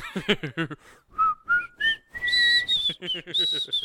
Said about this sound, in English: Were the Northerners whistling the Harlem Globetrotters themes the whole time?